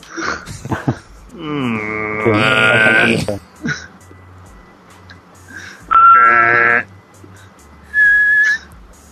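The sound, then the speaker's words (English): Two voices hum and whistle steady tones in imitation of the telephone ABCD touch tones, each humming one frequency: a long buzzy harmonic tone, then two short, bright, pure tones, with brief murmurs of talk between. “do you know what, do you know what the ABCD tones are on a telephone? I can hum them for you.”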